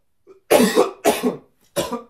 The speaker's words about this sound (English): As a smoker's cough, I've been smoking 5 packs a day since I was 15, brother.